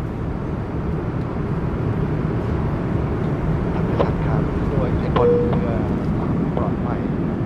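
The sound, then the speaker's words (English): A steady, heavy roar of an airplane cabin in flight, about an hour after leaving Bangkok and bound for Mumbai, a dense low engine drone that holds unchanged throughout, with faint murmurs and a brief tonal chime-like sound partway through. “Well, I left Bangkok about an hour ago and I've just completed my airplane meal.”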